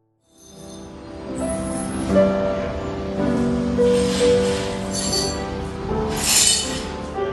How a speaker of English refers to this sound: others swept up broken glass